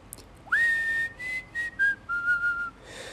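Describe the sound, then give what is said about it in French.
Someone whistles a short melodic phrase while walking in the street in the evening, a clear tone sliding up then holding and stepping gently downward across several notes, with no talking. “Je sifflais et je chantais.”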